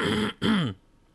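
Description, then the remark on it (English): A person clears their throat in two quick, raspy bursts, fairly loud, followed by near silence. “Yeah, clear your throat there.”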